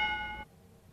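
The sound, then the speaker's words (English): A bright, bell-like correct-answer buzzer ding sound effect rings out once, rich in overtones, then cuts off after about half a second, leaving only a faint background. “Are those correct buzzer sounds,”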